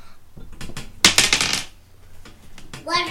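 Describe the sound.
Dice rattle and tumble across a hard surface in a loud clattering burst lasting about half a second, with a few lighter clicks before it and a brief voice near the end; the roll comes up 11.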